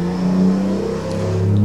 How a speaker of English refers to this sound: The car is very loud.